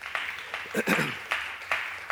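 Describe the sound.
An audience gives the Lord a big hand clap, a steady, dense wash of applause with a few sharper claps standing out and a brief raised voice calling out partway through.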